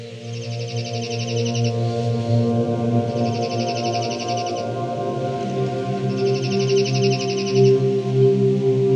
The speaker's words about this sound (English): The slate-colored junco is a slaty-gray sparrow with a bright white belly. They are a subspecies of the dark-eyed junco, which is common across all North America, spending their summers in the north and fanning across the continent for the winter.